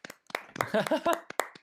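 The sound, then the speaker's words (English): A handful of sharp hand claps for the winner of a game land in an uneven rhythm while a voice talks or laughs through the middle of the burst. “No, oh, let's do clap.”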